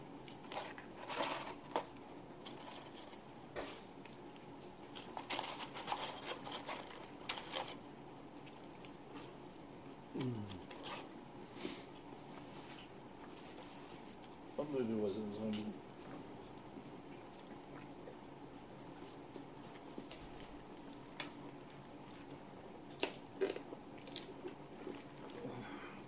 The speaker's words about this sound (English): These sounds of feasting enjoyment brought to you by.